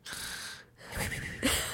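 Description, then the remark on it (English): A person imitates snoring with two breathy snore-like breaths separated by a short pause, the second growing louder and rougher toward the end. No talking. “does snore”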